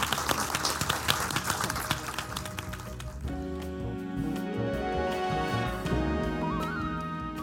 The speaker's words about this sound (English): And thank you for being such a great audience today. And I think all we have left to do is just give a big round of applause.